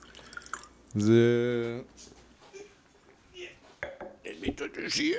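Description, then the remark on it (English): Château du Colombier 2018 Bordeaux wine glugs into a glass in one short pour, its tone rising as the glass fills, followed by quieter voices and faint clinks. “We are drinking a lot. Yeah, we're pouring. You're pouring.”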